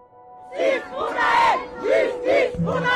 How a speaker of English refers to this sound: In the Paris suburb of Nanterre, thousands of people have taken to the streets to remember a 17-year-old boy killed by police during a traffic stop.